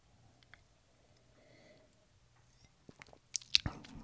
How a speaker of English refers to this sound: So, let me take a sip of wine and think about it.